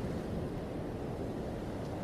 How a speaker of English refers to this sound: You watch as the ocean waves come back and forth from the shore.